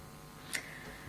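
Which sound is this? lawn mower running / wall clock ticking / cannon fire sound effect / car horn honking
wall clock ticking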